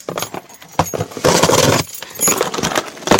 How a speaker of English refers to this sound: Okay, I really can't figure this out. Alright, well, plan B. Open it with keys.